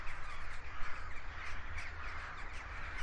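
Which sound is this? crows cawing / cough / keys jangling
crows cawing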